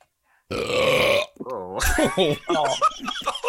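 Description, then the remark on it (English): A long, loud, roaring burp rumbles out for about a second, deep and growly like a lion's roar, then voices break in talking and laughing over the tail end. “Was that the MGM lion? That was the lion.”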